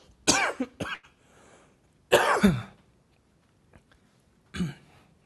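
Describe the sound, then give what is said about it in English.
Several harsh coughs from a speaker during a religious talk come in bursts: a quick double cough, then a longer rasping fit, and one more cough after a short pause, with quiet room noise between. “I'm still coughing.”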